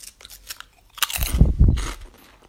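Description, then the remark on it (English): Loud crunching of ham and English mustard flavour potato crisps being bitten and chewed, with a few sharp crackly bites building into a dense burst of munching before trailing off. “This is ham... An English mustard potato flavour crisps.”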